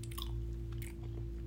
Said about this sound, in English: I gotta put this gum out because you can hear me chew. It's gonna bother me.